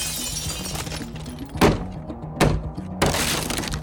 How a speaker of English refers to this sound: In a coordinated movement, one officer in the garden threw a brick through the bedroom window, while a colleague forced their way through the locked door.